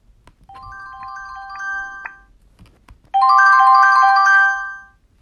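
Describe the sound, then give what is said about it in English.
An iPhone wildfire alert tone sounds twice: a softer electronic chime first, then a louder, fuller harmonic burst after a short pause, both clear with no voices. “As you take out your phone to document this moment to cherish forever, you see you have an iPhone alert.”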